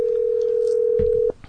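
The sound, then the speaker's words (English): A steady, loud telephone dial tone, heard while dialing a call, hums continuously for over a second, then cuts off abruptly, leaving faint background noise with a couple of soft clicks. “Let's call this number.”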